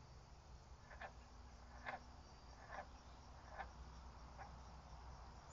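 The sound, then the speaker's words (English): A frog calls with short, raspy croaks repeated about six times at a steady, unhurried pace, over a constant low background hum with no one talking. “My frog companion has something to add there. I hope you could hear him.”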